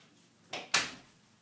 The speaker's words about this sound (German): Mach kurz die Tür zu.